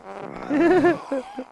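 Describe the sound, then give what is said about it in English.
A wobbly, buzzing fart sound effect in the trailer for the 2004 film White Chicks rips for about half a second, its pitch wavering, then two short sputtering blips follow. “Fart jokes.”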